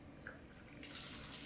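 A bath tap opens partway through, and a steady, hissy rush of water pours into the tub, continuing evenly to the end after a quieter low rumble at the start.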